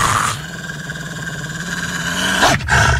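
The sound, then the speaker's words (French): A long, sustained howl holds a steady pitch for about two seconds, then swoops sharply up and down at the end. It sounds alone, with a rough, growling edge and no talking. “Alors sans faute, rejoignez-nous ici, sur les ondes de votre station de radio communautaire, où vous entendrez nos hurlements sur la tundra!”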